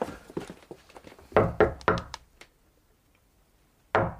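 A coded signal knock, the agreed knock for opening a locked wooden door: a quick run of sharp raps, a short silence, then two more firm knocks in a deliberate pattern. No voices accompany it.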